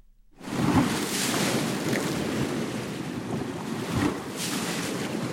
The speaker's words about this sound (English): We leave you this week on the shores of the Adriatic Sea. … composed this piece from recordings he made of waves hitting the shoreline and swirling in rocks along the coast near Rovinj, Croatia.